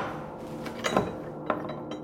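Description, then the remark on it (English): Old metal keys, the actual keys to the jail cell where the Scottsboro boys were locked up, clink together several times in quick, uneven jingles, with a louder rattle near the start and a sharp clink after it, over a faint steady background hiss. “And these are the actual keys that went to the jail cell where they were locked up.”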